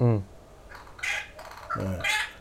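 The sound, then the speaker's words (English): Harsh, noisy bird calls, several squawks and raspy cries coming in quick bursts, as if birds are fighting with one another. “I'm just going to shoo this bird away. It's pretty noisy.”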